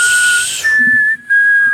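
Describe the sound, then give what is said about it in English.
A person whistles a sharp, steady high note that steps up slightly partway through and holds, with breathy hiss at the start. Fairly loud, with no talking. “Give me that whistle”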